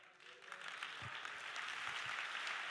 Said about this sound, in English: Oh, you're clapping like that's cute.